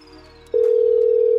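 A steady telephone dial tone, heard while placing a call, switches on partway through and holds loud and unbroken to the end, over a faint low hum, with no talking.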